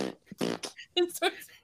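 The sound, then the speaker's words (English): A quick series of short, buzzy fart sounds, fairly loud, broken up by brief vocal noises over about two seconds. “Do you record your farts?”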